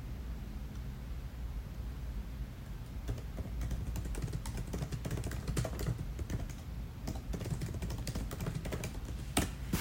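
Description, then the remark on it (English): Steady typing of notes on a computer keyboard, quick irregular key clicks over a constant low hum, with a few louder taps near the end and no voices. “Sometimes I like to talk to you guys while I'm typing on notes on my computer for you.”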